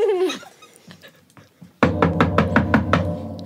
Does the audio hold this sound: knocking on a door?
yes